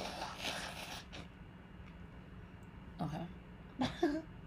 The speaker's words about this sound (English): Hold on, let me blow my nose.